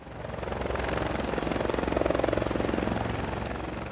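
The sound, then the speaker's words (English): A helicopter lands in a clearing, its rotor beating in a steady, rapid chop with a droning engine, loud as it swells slightly toward the middle, no voices present. “We see the race in progress, and one sled driver leaves the course and goes to a clearing where a helicopter lands to pick up the bags of white powder.”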